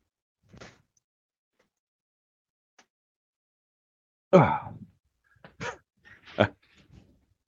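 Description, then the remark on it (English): A faint click, then a loud dog yelp with a whiny tail, followed by a few sharp knocks and rattles like a door being pushed open and shut as the dog is sent outside to its kennel, with no talking. “Go outside. Go outside. Go. I'll get him. Go ahead. Okay. Go. Kennel.”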